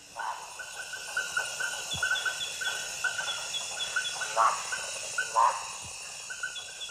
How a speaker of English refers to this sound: Here in the rainforest, north of Manaus, Brazil, Canadian biologist Barbara Zimmerman studies frogs and snakes.